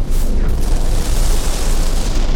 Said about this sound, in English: Yeah, with a sudden rumbling rising to a pitch and then turning into the shriek of metal, the echoing blast of something blowing up.